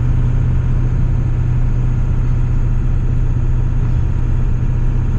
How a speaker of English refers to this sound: So just cruising along 40 miles an hour. I tell the truck is still in third gear. It hasn't actually hit fourth yet. We're only doing about 1800 RPMs.